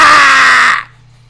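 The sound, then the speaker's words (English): A voice lets out a single loud, strained scream imitating someone in pain, recalling screaming when having to chop a finger off in a video game, held for under a second before cutting off abruptly into near silence. “At one point, I remember one point I had to chop my finger off in that game. I was screaming, like, ah!”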